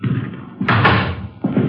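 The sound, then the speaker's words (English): The front door of an apartment building swings open and shuts, making two solid, fairly loud thuds, the first longer and heavier, the second sharper, over a low rumbling background. “Front door open?”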